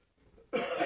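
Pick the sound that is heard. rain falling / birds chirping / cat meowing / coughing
coughing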